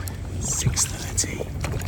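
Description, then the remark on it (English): A small boat tender motors in toward shore with a steady low engine drone, water splashing and hissing against the hull, and a bit of wind buffeting the microphone. “taking a tender into shore.”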